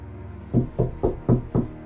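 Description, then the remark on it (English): Five soft, evenly spaced knocks on the closed wooden door marked 3E, muffled, each a dull low thud with a brief pause between, no voices. “Sure I do, I thought in return, stopping at the closed door at 3E and giving it a soft knock.”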